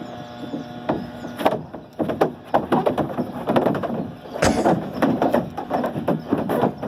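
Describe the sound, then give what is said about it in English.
A cow's hooves clatter along a dry water slide at a water park in Brazil in a fast, irregular series of hollow, woody knocks and scrapes, fairly loud and steady throughout, with a sharp bang partway through and no talking. “You can hear the cow's hooves clattering along, and you don't get to see the cow actually make it to the bottom of the slide and kasploosh into the water.”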